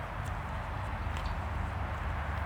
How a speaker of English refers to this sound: Welcome to Burn in Bokenas, where I live, where my closest neighbor right now is a cow eating grass.